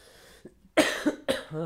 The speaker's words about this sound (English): Trying not to cough in the podcast.